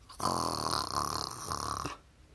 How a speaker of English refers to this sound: snoring in the back because he was unconscious the way they took him out.